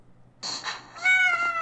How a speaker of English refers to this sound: Which sounded like every other meow. And it tells me, it says, it hurts somewhere.